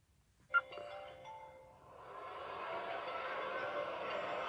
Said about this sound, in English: Oh, that right there was classic, right? You already know when you come to a comedy event, the phone is off, but somebody's phone went off.